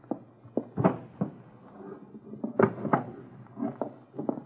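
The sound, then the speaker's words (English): The bottom drawer of a wooden dresser is tugged open with a series of uneven knocks, clunks and short scraping rattles, fairly quiet, with no one speaking. “It's in the bottom drawer of the dresser. I'll get it.”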